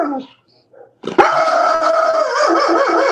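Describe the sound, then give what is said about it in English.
After a second of near silence, a dog next door breaks into loud, drawn-out barking that stretches into a wavering, howl-like cry and holds steady to the end, with no talking. “There's some stupid dog next door barking, and oh my gosh, man.”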